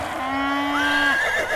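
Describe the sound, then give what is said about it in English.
Sir Stanley's horse lets out a single loud neigh as it rears at a festival, leaving its knight on the ground: a steady high whinny that rises and wavers toward the end, with no one speaking. “Oh no, Sir Stanley's horse has reared and this knight is on the ground.”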